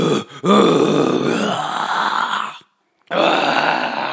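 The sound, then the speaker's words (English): A voice imitates death metal growling: harsh, guttural, raspy roars in two bursts, a long strained growl that breaks off into a brief silence, then another loud gravelly roar. “Sounds like death metal.”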